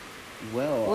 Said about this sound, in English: And he said, let there be rain.